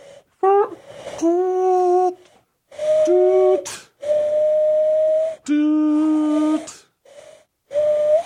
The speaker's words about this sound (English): I can blow 2600 hertz with this perfect pitch and get right into the trunk.